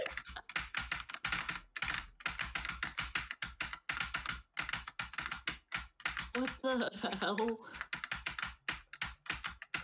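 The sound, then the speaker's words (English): Loud, rapid clicking of computer keyboard keys as someone plays a rhythm game, fast bursts of taps running nearly nonstop, with a brief voice-like tonal sound rising in the middle. “We're making a podcast, and you're using the loudest keyboard you have.”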